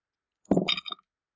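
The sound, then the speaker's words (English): Dice clatter briefly across a hard tabletop, a quick burst of rattling clicks lasting about half a second before settling, clear with no voices. “Oh, that's such a bad roll. Oh, I didn't use my dice. I used your dice.”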